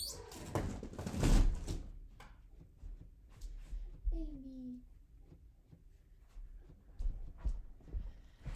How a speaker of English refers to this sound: I feel bad that the door's open. Let me try to close it.